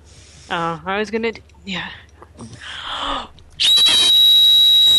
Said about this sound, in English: Okay, I need you to whistle 2600 hertz